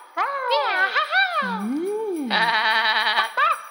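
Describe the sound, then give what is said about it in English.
A sheep, Ba Sheep, bleats repeatedly in wavering, drawn-out cries, fairly loud, while a bright jingling runs alongside from jingle bells laid out in a row and struck with a stick, growing busier toward the end, in a snow-covered clover field. “The six friends danced their way over to the snow-covered clover field where they heard Ba Sheep's bells jingling.”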